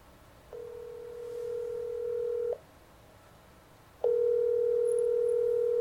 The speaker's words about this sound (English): Okay, let me call her and see if I can get her on the phone.